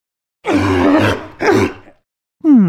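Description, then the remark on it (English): Loud sea lion barks: two long, harsh, guttural blasts, then a short pause and a higher, more tonal honk cut off at the end. No voices. “So, what's that sound? A sea lion!”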